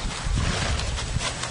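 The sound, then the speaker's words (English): A horse passing gas: a steady, low, fluttering rumble lasting over a second, fairly loud, with a breathy, windy texture and no talking. “Could you imagine having all that air in your intestines?”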